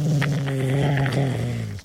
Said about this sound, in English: Does that sound like your dog? Is that like a, what was that? I don't know. It was a Halloween dog. It sounded like a motorcycle.